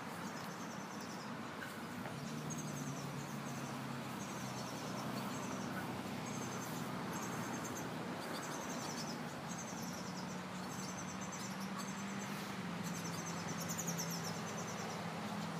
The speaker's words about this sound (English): Can you hear the birds too?